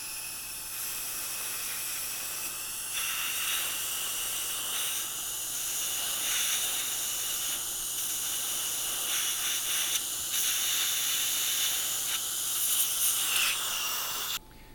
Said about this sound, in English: And so after 2 minutes, now what you're going to do is go in and completely rinse it off. And you do that just with a water spray. So I'm going to go in and just completely rinse this off.